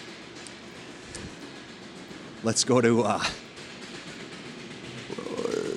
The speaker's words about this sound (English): It's like we're at a train track here.